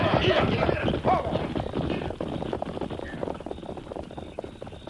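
Clattering hoofbeats from several horses bearing the Diamond Y brand rumble in a busy, rapid rhythm, loud at first and then gradually thinning and fading as the riders move off.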